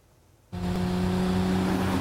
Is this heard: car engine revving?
yes